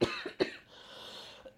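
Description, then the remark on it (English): Two sharp coughs in quick succession, a pause filled with faint breathy noise, then a small throat sound and the start of another cough at the very end. “I was going to say, who's coughing now?”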